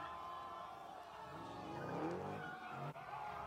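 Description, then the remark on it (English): Tires of stolen cars, including a Hellcat, screech and squeal in a sustained, loud skid as they do donuts, with engines roaring and a dense crowd-like wash of noise beneath; the squeal rises and bends midway through. “These are all $90,000 cars, by the way. That's a $90,000 Hellcat.”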